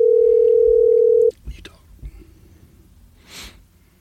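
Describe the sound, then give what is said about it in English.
A loud, steady telephone dial tone hums for just over a second while a call is being placed, then cuts off abruptly, followed by faint breathy rustling and a soft whisper-like hiss. “All right, we're calling him right now.”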